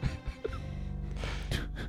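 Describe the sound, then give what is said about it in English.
A studio audience lets out a loud, sustained collective gasp, breathy, swelling briefly near the end before trailing off, on hearing that Kenan's Pokemon collection is bequeathed to Steve Martin. “Big gasp from the audience.”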